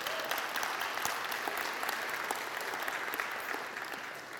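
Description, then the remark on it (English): An audience applauds steadily after hearing that a daughter has become a resident assistant at Liberty University. The applause is a dense wash of many hands clapping at once that holds an even, fairly loud level throughout without fading. “You're clapping for that, but now she wants the car.”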